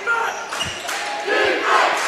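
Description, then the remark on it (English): A home crowd cheers at a district basketball game played on the home team's floor, a steady roar that swells midway, with a few dull ball bounces and faint high squeaks beneath it. “You can hear the crowd.”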